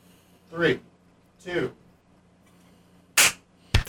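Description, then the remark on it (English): At the end of a moment of silence, a voice counts down "3, 2", then after a pause come two sharp, loud hand claps, the second following about half a second after the first rather than together. “So what I'll do is, after enough time, I'll go 3, 2, and then we'll clap, right?”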